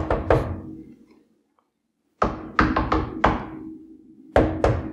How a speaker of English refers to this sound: No, I'll knock three times.